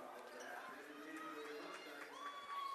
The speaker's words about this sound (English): And we're going to have a reaching in foul called here on Amherst and a sarcastic cheer for the SEM faithful because that's the second team foul that's been whistled against Amherst here in the game.